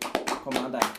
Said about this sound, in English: What do you think she'll get another round of applause for?